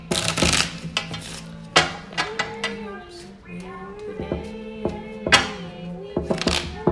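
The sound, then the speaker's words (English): A deck of playing cards being shuffled during a card game, with several quick riffling bursts and light clicks separated by pauses, over music playing softly in the background. “I feel like you've been shuffling for 3 days.”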